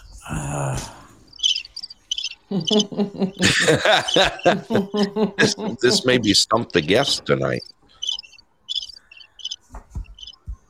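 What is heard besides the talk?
crickets chirping sound effect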